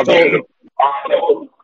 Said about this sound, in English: someone's echoing. I got him. I muted him.